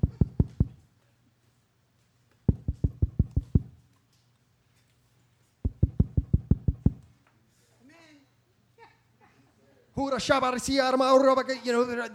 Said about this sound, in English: So what does he do? He knocks. Wish I had a better knocking sound effect.